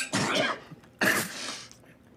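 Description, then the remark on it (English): A person imitates a fit of coughing and spluttering, two harsh, raspy bursts with a brief gasp between them, like someone choking on food. It mimics Nick Cage taking a bite of an over-salted breakfast in a film scene. “He takes a bite and he like coughs and splutters and chokes and it's...”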